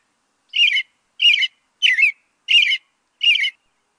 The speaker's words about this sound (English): Many of us cling to the idea of the American robin as spring's ambassador, arriving in early March to chirrup, chirrup that warm weather